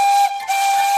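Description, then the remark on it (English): A loud, steady steam locomotive whistle blasts with a single sustained tone over a rushing hiss of steam, dipping briefly in the middle before resuming at full strength. “Steam engines have whistles that sound like this.”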